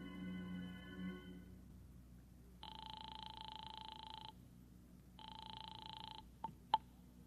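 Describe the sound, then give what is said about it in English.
A telephone rings twice over the line as a call is placed from a phone booth to a home: two long buzzing rings separated by a pause, followed by sharp clicks as if the receiver is picked up. No one speaks. “I beat it to the nearest phone booth and called Howard Wilcox's home”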